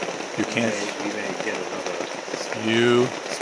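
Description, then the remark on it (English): Steady rain hisses continuously in the background outside in a little canyon around midnight, a dense wash of patter, while short voiced sounds from someone rise briefly over it twice. “As you may guess, it's raining out again!”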